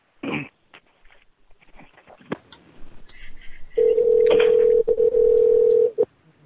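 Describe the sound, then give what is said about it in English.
During a prank phone call, a quick series of short telephone dialing beeps gives way to a steady, loud ringback tone lasting about two seconds, with a brief throat-clearing sound at the start. “It's ringing.”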